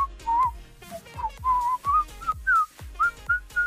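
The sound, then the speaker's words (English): Someone whistles a bright, wavering melody close to the microphone, the notes rising and sliding over a steady, thumping low beat that pulses about twice a second. “I was just reaching the last chord cadence.”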